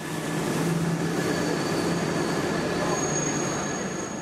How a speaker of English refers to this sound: Each weekday morning, thousands of smartly dressed commuters disembark from trains in Brussels' North Station, the Gare du Nord.